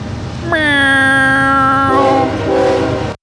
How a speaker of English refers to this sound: Here comes the train.